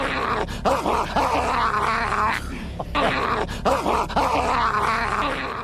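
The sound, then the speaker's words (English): A man's voice, the A Current Affair (ACA) dog man, imitates a dog, with loud, sustained growls breaking into rough barking bursts, continuous with only a brief pause midway. “That's actually a bloke. Remember that? Yeah. We're looking for a dog noise.”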